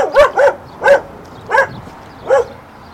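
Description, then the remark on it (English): A neighborhood stray dog barks five times in an uneven rhythm as someone is led past it to a shed out back: a quick pair, then three single barks spaced farther apart. The barks are sharp and mid-pitched, with no voices. “Nevertheless, he greets me with a smile and leads me past a barking neighborhood stray to the shed out back.”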